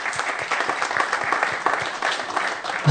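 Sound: audience clapping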